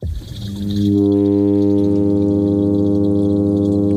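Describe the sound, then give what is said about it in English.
A male midshipman fish's mating call: a low, buzzy droning hum that swells up over the first second, then holds one steady pitch with rich overtones, loud and unbroken, with no voices. “Turns out it was just fish getting down.”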